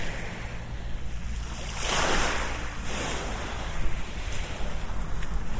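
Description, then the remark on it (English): Gentle sea waves wash and lap against the shore along a seafront in Essex, England, on a bright sunny day, touching a walker's toes, a soft swell rising around the middle and easing off, with a steady low rumble of surf and a light breeze beneath. “Whoop, the sea is cold. It's just touching my toes along the seafront.”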